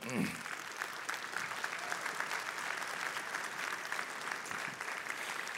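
An audience applauds steadily, a dense wash of many hands clapping at an even level throughout, with no pauses and no talk over it.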